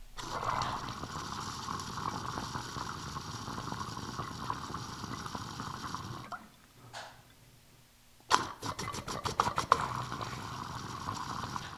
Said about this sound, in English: I like to rev them, you know, rev up the rig, like shred the water to pieces, make even more tiny bubbles.